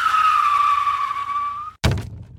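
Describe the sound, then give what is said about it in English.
A car brakes hard to avoid a big crate that landed in the middle of the road in front of it, with a loud, sustained tire screech lasting nearly two seconds, then a brief pause and a sudden heavy thud, as if hitting something. “Sorry, I had to slam on the brakes or I would have plowed right through it.”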